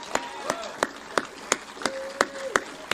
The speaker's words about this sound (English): Let's give a round of applause to all six candidates here tonight.